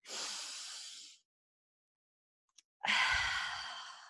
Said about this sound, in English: Breath work is so, so powerful. I think right now, like, if we could all just take a deep breath.